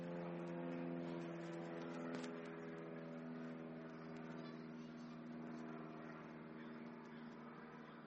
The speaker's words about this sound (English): Let me pause for the second plane. I know it doesn't bother others, but I feel like I'm battling the sound.